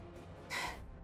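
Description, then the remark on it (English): A single sharp, breathy gasp from a person who has just been struck, a quick rush of air lasting under half a second, with no talking around it. “You hear the sound of a strike at … gasping”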